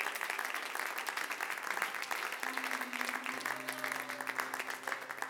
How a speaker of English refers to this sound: I'm so glad to be a part of God's church. Let's clap our hands to him all over this house. Let's clap our hands to him.